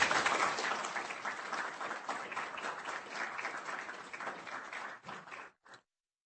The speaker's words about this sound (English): Please join me in giving him a warm round of applause.